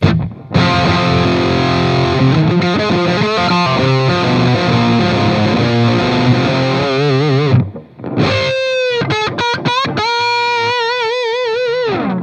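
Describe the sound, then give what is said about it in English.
Electric guitar played through a Custom Audio Electronics Drive overdrive pedal, a crunchy distorted tone with sustained chords and wavering bent notes, a short pause near eight seconds, then bright vibrato-laden lead lines with no talking. “Then out of that into Custom Audio Electronics Drive, which we talked about.”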